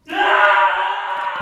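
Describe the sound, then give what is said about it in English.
A man at a party lets out a single loud, sustained yell of pain, strained, holding steady for over a second with no talking around it, as he is shot in the calf by a gun fired about 10 feet away. “About 10 feet away, in the direction of the barrel of the gun is pointing, some innocent bystander, minding his own business, having a pleasant time at a party, yells.”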